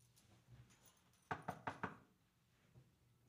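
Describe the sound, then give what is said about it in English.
Four quick, evenly spaced knocks on a wooden surface, fairly loud, ringing out alone against a quiet background with no one speaking. “I didn't get COVID, and I feel great. Knock on wood.”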